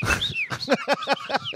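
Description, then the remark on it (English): Someone imitates a robot droid with whistled beeps: a quick run of about half a dozen chirping, warbling tones that bend up and down in pitch, fairly loud and with no talking. “Whistle noises.”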